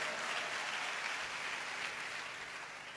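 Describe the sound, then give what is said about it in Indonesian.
Sustained applause from an audience at an evening worship service, a dense wash of many hands clapping at once, steady and fairly loud throughout, tapering slightly at the end with no voices over it. “Tepuk tangannya meriah.”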